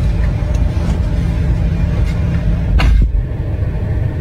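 car interior

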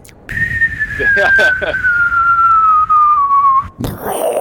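helicopter flying overhead

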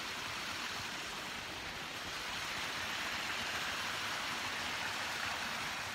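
water flowing

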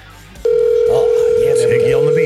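telephone dial tone

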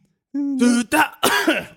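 cough

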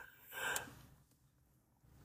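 big yawn

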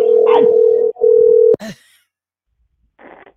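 telephone ringback tone

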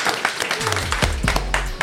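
audience clapping

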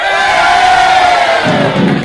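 audience clapping and cheering

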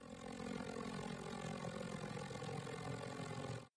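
airplane engine in flight

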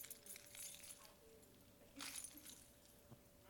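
keys jangling

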